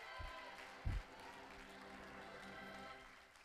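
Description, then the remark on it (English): A crowd claps their hands, asked to clap if they love God, together in a dense, steady wash of applause that holds for several seconds, with a couple of dull low thumps near the start. “Clap your hands if you love God today.”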